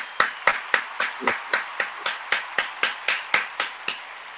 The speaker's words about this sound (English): Man, round of applause.